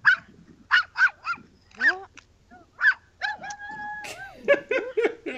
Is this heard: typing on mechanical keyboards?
no